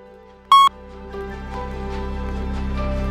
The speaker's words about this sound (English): So speak to me about the spark after the beep. And here's the beep.